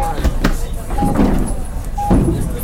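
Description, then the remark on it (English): An aircraft cabin door opening at the gate in a flight simulator, triggered with the Control R keys, with a few mechanical thumps and clunks and short repeated beeps over a steady, droning cabin hum. “And I'm gonna open the door of the aircraft with control R.”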